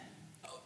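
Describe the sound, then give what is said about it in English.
A single quick hiccup, a short abrupt gulp of breath that is fairly faint, with no talking around it. “Bless you. Is that what you say for a hiccup?”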